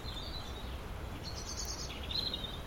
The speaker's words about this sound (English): And that was the blackbird doing it. I always think when blackbirds do that, it's a kind of an alarm call rather than a song.